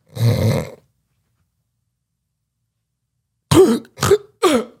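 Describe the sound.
A voice imitates a sleeping man with sleep apnea: a choking, snore-like rasp, then silence for a few seconds before three sharp, strained gasps for air in quick succession, fairly loud.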